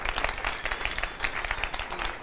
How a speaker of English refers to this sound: Come on, give the Lord a huge round of applause if you believe that.